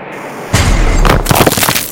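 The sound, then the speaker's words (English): After a brief quiet, a copper core fragment missile slams into a metal turret with a sudden, loud blast: a deep rumbling boom followed by crackling, shattering debris that continues for over a second. “Tasha and I stepped out of the tower when the first copper core fragment missile crashed into the turret.”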